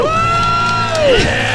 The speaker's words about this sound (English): Let's hear a debt-free scream. Ready? 3, 2, 1. We're debt-free! Woo!